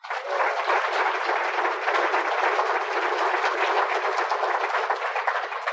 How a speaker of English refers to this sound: And I think we ought to give a round of applause to this committee.